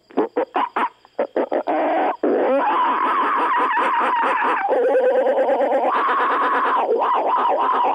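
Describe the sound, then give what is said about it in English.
A human voice imitates monkey calls: a quick series of short, sharp hoots, then loud, continuous shrieking cries that waver and shift in pitch, with no ordinary speech. “Cut the monkey calls.”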